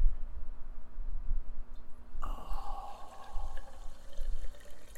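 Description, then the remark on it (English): After a quiet, low rumbling start, liquid suddenly begins pouring into a glass, a steady splashing and gurgling that continues to the end without any talking. “I'm pouring it.”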